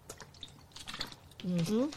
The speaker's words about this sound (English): I'm going to have to cut that out, my little drink of water.